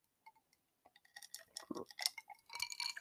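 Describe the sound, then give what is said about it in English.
Ice or water clacks and clinks inside a glass, a scattered run of small, bright knocks that grows busier toward the end, with a low sloshing burst in the middle. “Y'all hear my water clacking in the background.”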